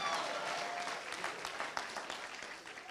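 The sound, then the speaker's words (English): An audience claps together in a steady, dense burst of applause that holds at an even loudness for a few seconds, with no voices rising above it. “Now your clapping means you don't know which God you are talking about.”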